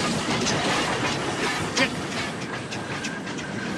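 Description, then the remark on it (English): A train departs, rolling along with a steady rumble, its wheels clacking over the rail joints in a loose, uneven rhythm. No one speaks. “Now leaving reality, destination, the Lost World. The train will be departing any minute.”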